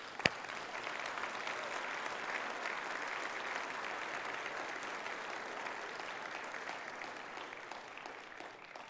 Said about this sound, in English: Let's just clap.